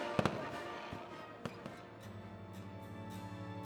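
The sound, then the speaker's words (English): Several sharp fireworks bangs crackle and pop, a quick double burst followed by scattered reports, over a steady murmur of crowd and background noise, as fireworks light up the night sky during celebrations of the Brooklyn Bridge opening. “Following this ceremonial crossing, speeches and other celebrations continue into the night when fireworks light up the sky.”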